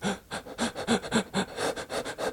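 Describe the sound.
A person imitates rapid, panicked breathing: quick, moderately loud in-and-out breaths in a fast steady rhythm with no pauses, lasting a couple of seconds and no talking.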